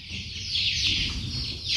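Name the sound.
chickens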